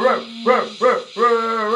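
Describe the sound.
A radio host on Cove FM imitates a dog barking: three short, loud woofs in quick succession, then a longer drawn-out howling bark, with no other talking.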